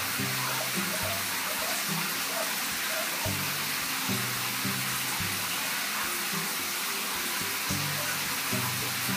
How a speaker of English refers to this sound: Get a little bit closer to that waterfall. Well, not as big as it looks. Definitely still pretty good, just like this orange. And hey, it's flowing water.